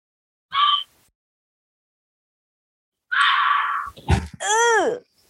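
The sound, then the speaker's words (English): A fisher cat's scream: one brief shrill shriek, a pause of a few seconds, then a longer harsh screeching cry that breaks into wavering, falling wails. No one speaks. “It gives me war flashbacks. That's what it sounds like. It triggers me.”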